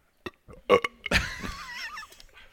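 A loud, drawn-out burp rumbles into the mic for over a second, preceded by a few short throaty clicks and gulps, with no talking.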